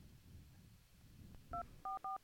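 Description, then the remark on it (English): Three touch-tone dialing beeps ring out loud as a connected phone dials the Eastern States Exposition, each a short steady dual-pitched tone: one, a brief pause, then two more in quick succession over a faint background hum. “Yeah, let's give them a call.”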